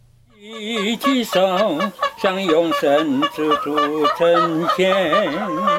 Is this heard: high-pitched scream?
no